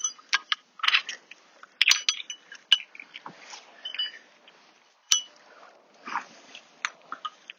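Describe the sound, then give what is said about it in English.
A dog crashes through undergrowth, with irregular bursts of snapping twigs and rustling leaves coming and going over several seconds, lively, with no one speaking. “Oh, the dog's coming, tearing through, I don't know if you hear that.”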